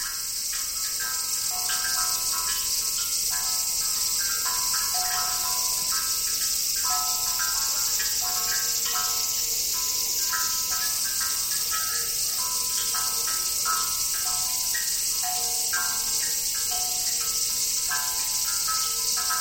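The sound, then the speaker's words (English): On a summer evening, a dense, steady cicada drone hums high overhead while hollow, tuneful knocks of water dripping from a stone basin into a buried ceramic bowl, magnified by bamboo tubes, repeat in a loose rhythmic pattern underneath, with no voices. “On a summer eve, cicadas added their own rhythms.”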